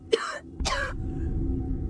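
Two harsh, raspy coughs in quick succession, fairly loud, over a steady low rumbling background, as a man splutters after seawater gets into his nose while struggling in the sea.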